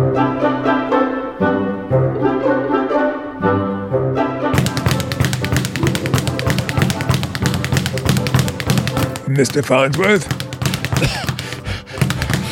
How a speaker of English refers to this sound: Don't bother me while I'm punching the bag.